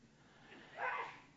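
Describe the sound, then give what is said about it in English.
A single quick sneeze bursts out after a brief breathy lead-in, heard on its own and fairly soft against a quiet background. “Bless you.”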